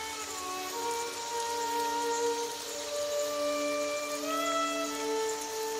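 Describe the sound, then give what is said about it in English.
Steady rain falls in the woods, pattering in an even, continuous hiss, with soft sustained musical tones drifting over it. No one speaks. “The walk back through the woods in the rain was no picnic”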